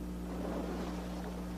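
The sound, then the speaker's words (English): Steady seaside ambience of wind and ocean waves at Golden Beach, Florida, a continuous broad rumble with a low droning undertone, holding even in loudness throughout, with no voices. “This is Golden Beach in Florida.”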